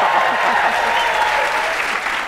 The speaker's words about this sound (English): Is there that canned applause? No, it's hilarious. No, okay. I'll prove it to you. Everybody applaud. Okay.